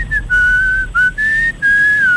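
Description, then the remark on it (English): A man whistles a smooth, sustained melody in breathy, flute-like tones, mimicking a pan flute. Several long held notes with brief breaks between phrases, loud, with no talking. “You will believe a man can whistle.”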